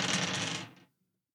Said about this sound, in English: I got a 10. I got a 9. Ahaha. I use my, what I call the poison dice, because it has green and purple all swilled in.